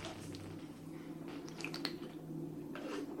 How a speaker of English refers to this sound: Let me grab a little sip of coffee. It's early in the morning here, folks.